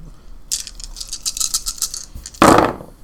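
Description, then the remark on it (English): Seven dice rattle and clatter in a quick burst of clicks, then tumble out onto a hard surface with a louder scattered clack, with no talking. “So you have seven dice.”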